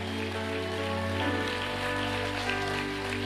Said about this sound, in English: Come on, clap like God's word is powerful. Come on, clap. If you're going to clap, give God glory, because there's breakthrough in the room today.